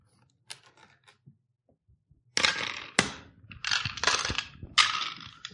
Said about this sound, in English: Roll the dice to see how much you start the campaign with.